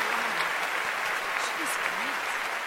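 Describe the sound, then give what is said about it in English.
Loud, sustained applause fills a concert hall after a performance, a dense, steady wash of many hands clapping at once without pause, with faint murmuring voices buried underneath. “Then a thunderous applause filled the hall.”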